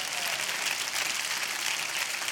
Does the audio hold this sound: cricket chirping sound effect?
no